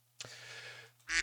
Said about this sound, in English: I don't even know what the quack means. That's the point of the quack means.